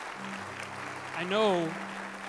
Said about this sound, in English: You know, how about a great round of applause